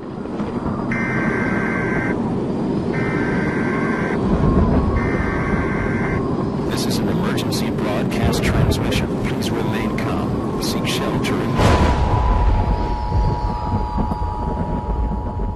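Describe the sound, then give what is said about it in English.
Three short, harsh bursts of Emergency Alert System data tones repeat about a second apart in a TV station promo for the Jacksonville Jaguars football team in Jacksonville, Florida, followed by sharp clattering hits and a steady high alert tone, over a loud, noisy background with voices. “So why are these tones so protected?”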